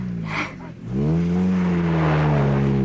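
A racing car engine revs loudly, dipping briefly before surging back up into a strong, sustained buzzing drone with a steady, slightly wavering pitch. No one speaks.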